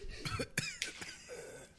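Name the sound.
cough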